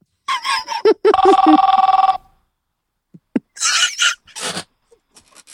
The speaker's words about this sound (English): Phone's ringing, dude.